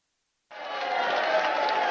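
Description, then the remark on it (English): After a brief silence, a crowd abruptly breaks into booing, a loud, sustained wash of jeering voices that holds steady to the end. “That sounds like booing.”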